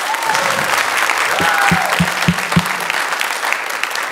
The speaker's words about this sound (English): I thought we could get some claps on that.